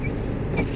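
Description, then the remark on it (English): The engine of an old 1997 Ford Escort rumbles steadily while it snows, a dense low drone with a faint high whine, loud and continuous throughout, with no voices. “Listen to the engine roar of my old car.”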